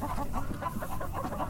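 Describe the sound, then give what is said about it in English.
A hen cackles after laying an egg, in a rapid run of repeated, rhythmic calls, steady in loudness, over a dense background of other poultry noise with no talking. “When you hear them cackle, like that one bird is, it means they just laid an egg.”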